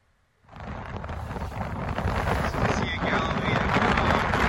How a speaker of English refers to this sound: That's me shouting in my phone. You can't hear me because the wind is so loud. That's good right there. And that's a typical day or moment of a day on the Sea of Galilee because there's mountains that surround this sea,